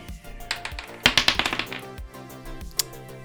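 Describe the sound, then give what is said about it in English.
Dice rolled by players rattle and clatter across a hard surface in a quick burst of sharp clicks, then a few scattered taps settle out, with soft music playing underneath. “let's all roll for last time on Beyond the Dice”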